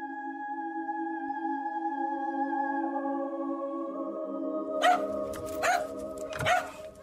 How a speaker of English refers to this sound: My dog came down kind of barking at the bedroom door, which is not unusual because he would often come down.